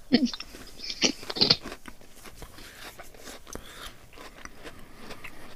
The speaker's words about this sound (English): Very crunchy. Very crunchy biscuit base.